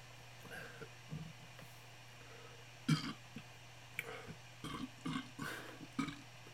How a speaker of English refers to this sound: Man, this Bud Light gives me some baby burps.